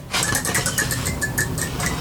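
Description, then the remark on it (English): A homemade wooden 'creature spin' game spinner, spun really fast, whirs steadily for about two seconds, giving a fast, even rattle of clicking pulses with a faint higher-pitched ringing tone running through it. “It's made out of wood. You're supposed to spin it really fast.”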